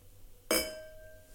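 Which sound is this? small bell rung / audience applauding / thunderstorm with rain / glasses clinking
glasses clinking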